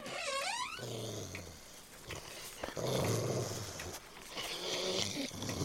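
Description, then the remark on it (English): A big wolf's deep, rough growl rumbles continuously and loudly, with a sharp rising whine-like cry at the start before the snarling settles into sustained, throaty growls. “What the hell was that? A big goddamn wolf!”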